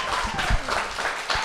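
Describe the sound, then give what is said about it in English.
A short burst of closing crowd applause at the end of a comedy show: many hands clapping in a dense, crackling patter that swells in a few uneven waves. It is moderately loud and carries on steadily for its brief length, with no talking. “One more round of applause, and then we're out of here.”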